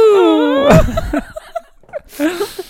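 A long, loud yawn: a whining, tonal note that slides downward for under a second, then breaks into a breathy, noisy exhale, followed by a few soft mouth sounds and short murmurs.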